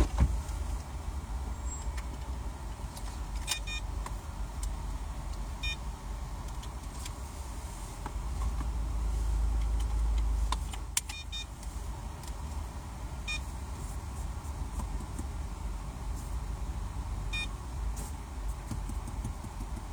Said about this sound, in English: All right, I'm gonna shut up for a bit so I can pay for my car wash ticket here.